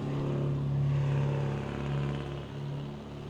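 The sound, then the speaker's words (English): A Sunbeam sports car engine rumbles loudly, a steady low throaty drone that swells slightly and eases as it drives past, with no voices. “That looked like the Get Smart car. It kind of did. The sunbeam.”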